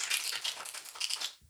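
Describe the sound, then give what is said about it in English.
Tarot cards being shuffled: a steady run of crisp, papery flutters and slaps in quick uneven bursts, bright and hissy, fading out at the end with no voices. “You can connect to these cards just by hearing the sound of them being shuffled.”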